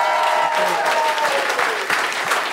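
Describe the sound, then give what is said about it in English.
A live audience breaks into a loud, sustained round of applause for Dave Thornton, Frank Woodley and Lehmo, dense clapping steady throughout with a few cheers and whoops mixed in. “Give a big round of applause, Dave Thornton, Frank Woodley and Lehmo.”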